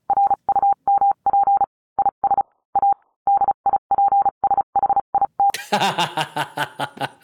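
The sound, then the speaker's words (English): A single steady beeping tone keys on and off in short and long bursts, tapping out Morse code for several seconds, then a noisy burst of sound cuts in at the end. “QAnon forums believe Trump is communicating with them through Morse code”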